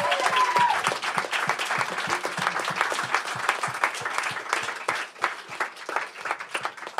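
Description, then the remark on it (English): An audience gives itself a round of applause for attending the evening's event, steadily for several seconds, a dense patter of many hands clapping with a few louder individual claps standing out, holding fairly even loudness throughout. “And so I want you to give yourselves a round of applause for showing up here tonight and supporting conversations like this that need to be had and need to be heard.”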